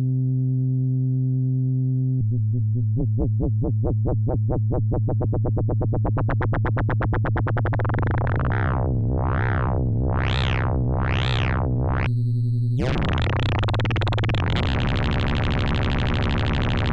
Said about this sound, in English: Well, maybe let's amplitude modulate this. I'm going to use the Pico VCO in LFO mode. Just get a regular sine wave coming out of there.